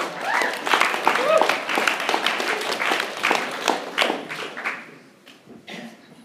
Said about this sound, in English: Just give Matt Morse a round of applause.